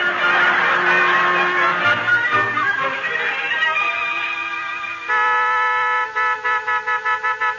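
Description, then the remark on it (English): A car horn blares in long, loud, steady blasts, then breaks into a quick run of about seven short, rhythmic honks at the end. Bill is sounding the horn outside, waiting with Edna to drive someone to the train station. “Hey, Tacy, go out and tell Bill to lay off that horn, will you?”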